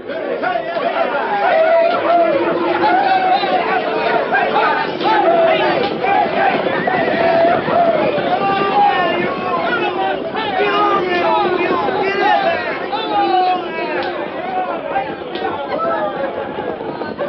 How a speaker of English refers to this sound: Thousands of frantic, yelling, riding, and wildly excited people poured across the Kansas state line and into the Cherokee Strip. They came on horseback and on foot, by wagon, buckboard, and scooter.